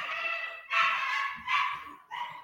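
A dog barks loudly, four drawn-out, yelping barks in quick succession with short gaps between them and no other sounds around.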